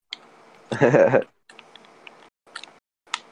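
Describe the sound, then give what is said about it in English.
Scattered sharp computer clicks from a person playing Minecraft tap out at irregular intervals, small, with a short loud burst of voice-like noise near the start and a faint background hum throughout. “Who's clicking? Who's clicking?”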